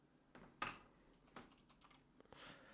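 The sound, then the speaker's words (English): Someone types a name into the name field of an online tool on a computer keyboard, with a handful of irregular, fairly quiet key clicks and taps spread across a few seconds, no voices present. “I'm not having it on screen while I type what I may or may not be typing.”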